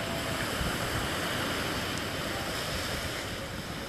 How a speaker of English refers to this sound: I'm sitting in front of the Pacific Ocean, vast and endless. There is beautiful clouds out in the horizon. It's a beautiful sunny afternoon here in Waikiki. Now looking at this vast ocean.